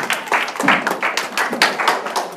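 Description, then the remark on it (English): An audience claps together in a steady round of applause for the band, a dense, bright patter of many hands with small surges in loudness, with no voices over it. “All right, well, can we just, as a sign of thanks, give a round of applause to the band again tonight?”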